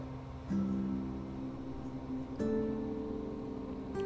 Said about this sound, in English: And if you hear the train in the background, they only blow that horn extremely loud because of where I live. There are lots of elk and deer in this area. So we'll let the train pass for just a moment.